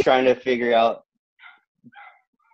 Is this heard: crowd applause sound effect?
no